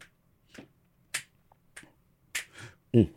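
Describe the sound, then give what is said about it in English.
A steady beat of finger snaps, given as the beat for a freestyle rap about Spider-Man: about five or six crisp, sharp clicks spaced roughly evenly, played alone in near silence before a voice comes in at the very end. “No, just give me a finger snap.”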